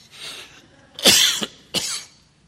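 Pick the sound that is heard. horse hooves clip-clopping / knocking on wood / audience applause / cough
cough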